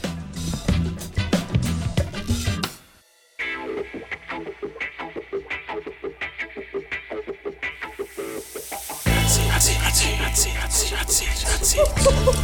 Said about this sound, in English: No, that sizzling sound means that it's hot seat time.